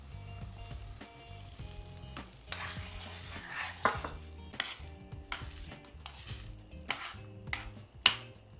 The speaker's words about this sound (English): You hear that sizzle go way down when we added all that liquid.